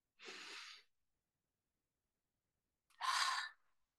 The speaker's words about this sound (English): Relax as much as possible and take a deep breath in through your nose. Hold it a couple seconds and release your breath through your mouth. Let's do it together.